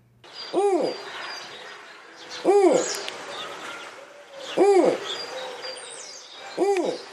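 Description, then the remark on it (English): A snowy owl gives four loud, low, arching hoots, spaced roughly two seconds apart, each swelling and falling, with faint background chirps and rustling between them. “Number one, the snowy owl.”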